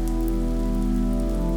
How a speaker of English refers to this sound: Rain begins to fall in larger and larger drops, and then in sheets.